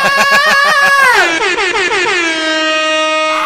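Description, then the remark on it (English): Loud air horn sound effect blasting in rapid stuttering bursts, then one sustained blare that bends downward in pitch and holds, with no talking over it. “Air horns galore for that one.”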